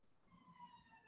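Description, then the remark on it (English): Faint siren of an ambulance going by, a sustained high tone with rich harmonics that holds steady for about a second over a low background rumble, with no talking. “Sorry, there's a ambulance going by now.”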